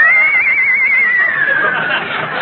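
A horse at a table whinnies loudly, one long quavering high-pitched call that wavers rapidly and slowly slides downward over a couple of seconds, with no talking.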